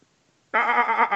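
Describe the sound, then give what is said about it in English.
A single loud sheep bleat, wavering, starting abruptly after a brief silence and lasting under a second, from the film Evan Almighty. “Sheep. Sheep!”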